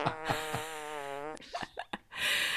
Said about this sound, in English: I listen to different podcasts to go to sleep because I don't want to go to sleep with you farting in my ear.